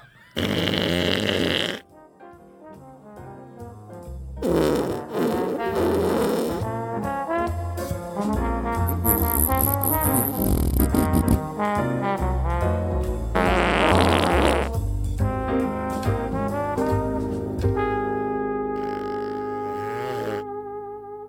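A run of loud, drawn-out fart noises, buzzy and sputtering, follows one another almost without pause, some low and rumbling, others higher and squeakier, with no talking.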